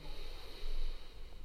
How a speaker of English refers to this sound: Taking a lovely, easy, deep breath in,